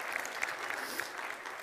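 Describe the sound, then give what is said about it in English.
A church audience claps steadily, a dense wash of many hands with small sharp peaks scattered through it, holding an even, fairly loud level for a second and a half. “We can clap about that.”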